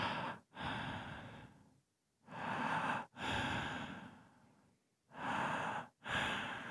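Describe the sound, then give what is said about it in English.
A person imitates heavy breathing, with loud, rasping inhales and exhales alternating in a slow, steady rhythm, about six breaths separated by brief silent gaps. “And I could hear it, just this breathing.”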